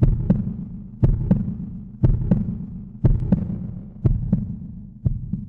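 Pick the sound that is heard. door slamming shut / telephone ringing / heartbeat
heartbeat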